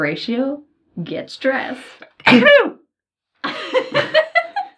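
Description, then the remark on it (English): A single sharp sneeze bursts out, loud and sudden, between stretches of someone talking. “Bless you.”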